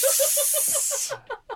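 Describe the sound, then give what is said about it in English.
Water splashed onto hot sauna stones sends up a loud, steady steam hiss that stops abruptly after about a second, with rhythmic bubbling pulses beneath it and a few afterward. “This is the ABC sauna. I'm smoking cigars. I'll just pour a bit more of that water.”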